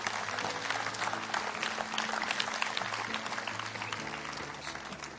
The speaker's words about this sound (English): Give him a hand clap. Amen.